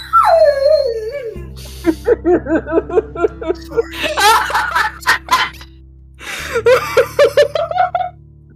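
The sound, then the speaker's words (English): A dog whines in a falling, drawn-out cry, then breaks into a rapid run of yelping whimpers and sharp barks, loud, pausing briefly before another burst of yips. “Oh my god, someone help that dog.”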